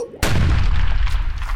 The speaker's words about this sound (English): Oh, God. Oh, my God. It just blew up. There's crap everywhere.